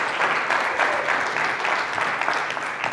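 A crowd claps steadily, a dense patter of many hands at a constant loud level, with no pauses in the sound.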